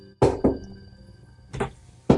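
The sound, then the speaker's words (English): A heartbeat sound effect, heard from the other side of a door: deep, muffled double thumps in a slow lub-dub rhythm, with a long pause between beats and a low steady hum underneath. “Yeah, it does sound like a heart.”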